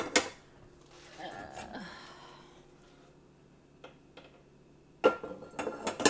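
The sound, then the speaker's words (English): Old pots and dishes clatter and clink as a dishwasher is loaded, with a sharp knock at the start, scattered light clanks in between, and a burst of louder rattling clatter near the end. “Okay, almost done with my dishwasher.”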